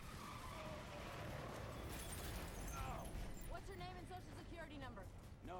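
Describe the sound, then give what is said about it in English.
A dense, roaring rumble of many different film explosions and crashing debris fills the first few seconds, then continues underneath as a man's voice talks over the loud blasts. “This is a special … moment of all these different explosions.”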